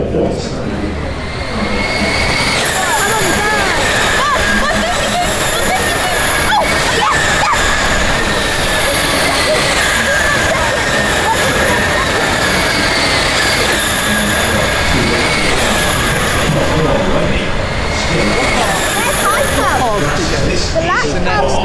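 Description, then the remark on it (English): Racing cars speed past on a circuit with a loud, continuous high-pitched whine that swells and shifts in pitch, while two young boys screech over the engine noise throughout. “There you go, racing cars and screeching 10-year-olds.”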